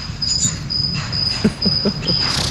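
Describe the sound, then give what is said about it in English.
A cricket chirps at night in a steady series of high, trilling bursts, persistent over a quiet background with a few soft low thumps underneath; it has been keeping someone awake all night. “I don't remember whether it was Brad or Vin who had the issue with the crickets, but how did you get rid of them at the end of the day? This guy has been keeping me awake all night last night. Can you hear him?”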